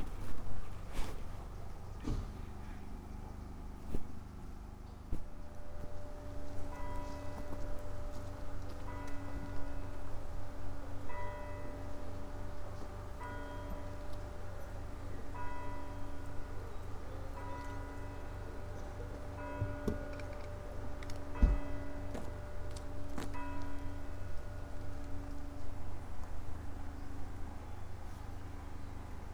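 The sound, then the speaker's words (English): Ambience at the entrance to St. Justin Roseland Church: bells ring out in a steady, repeating pattern over a constant low hum, with faint regular ticking underneath and a sharp knock partway through. No one speaks. “I've now reached the entrance to St. Justin Roseland Church.”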